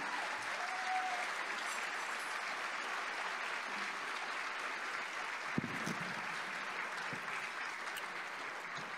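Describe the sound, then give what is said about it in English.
A crowd claps steadily in sustained, dense applause that holds an even loudness throughout, with a few sharper individual claps and faint murmurs underneath, applauding a team of staff members as they stand. “So please give them a warm round of applause.”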